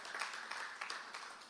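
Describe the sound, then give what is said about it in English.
Thin, half-hearted applause from an audience during a sermon: a quiet, brief patter of scattered clapping that stays fairly even for about a second and a half, with no voices over it. “That was kind of half-hearted applause there.”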